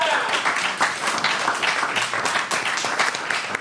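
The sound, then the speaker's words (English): An audience applauds steadily for a team called I Know What You Did Last Summer, a dense wash of many overlapping claps holding an even, fairly loud level for a few seconds without fading. “Big round of applause for I Know What You Did Last Summer.”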